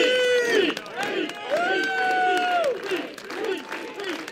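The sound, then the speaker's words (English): An outdoor overflow crowd of at least 100 people, unable to get into the venue at a Mayor Pete event in New Hampshire, cheers loudly as he stands on a bench rallying them, many voices shouting and holding drawn-out chant-like cries together in rising and falling waves, continuous for several seconds. “So Mayor Pete stood on a bench outside and revved up the crowd.”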